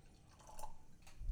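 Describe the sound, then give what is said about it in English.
A carbonated drink is poured into a glass, a soft, brief trickle of liquid with a faint splashy texture, heard quietly on its own with no talking. “You could hear that on the mic. The mic picked it up. I was not pouring that near.”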